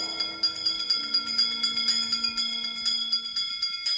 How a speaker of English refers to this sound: Wizards and witches, wherever you dwell, give us a hint by ringing a bell.